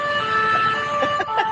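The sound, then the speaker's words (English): A European-style emergency siren blares loudly, its steady two-tone wail holding through the short moment with faint traffic noise underneath. “The sirens are on. That's right. Although I have the haughty European siren, though.”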